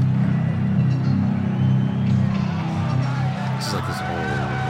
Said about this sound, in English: Heavy metal sound that you hear is Mike Tyson about to make his way in, I believe. The sound is deafening here in the arena, so I won't try to yell over it. All I can say is the heavyweight champion is about to make his appearance in the ring.